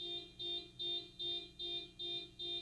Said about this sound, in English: Oh my fucking God. What is going on? I've never heard someone's car alarm go off this much before.